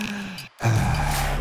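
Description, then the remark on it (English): Two breathy breaths separated by a short pause: a softer airy one, then a louder, longer breath with a slight voiced, groaning edge, like a deliberate exhale or sigh. “Well, I can do that by breathing in and out.”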